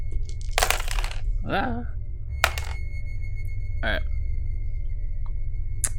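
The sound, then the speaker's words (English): Four game dice, three positive and one negative, clatter across a tabletop in a short burst, followed by a few sharp knocks as they settle, with brief murmured voices and a steady low background hum. “So, yes, three positive, one negative. Come on, good roll. Good roll.”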